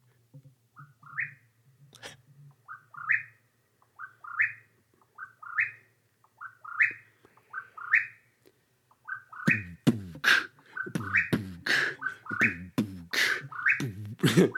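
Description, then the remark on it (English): A Mexican whip-poor-will repeats a short, rising whistled call about once a second, then a much louder, denser burst of rapid overlapping calls takes over toward the end. “we're going to talk about a bird. One bird. Birds. The Mexican whippoorwill.”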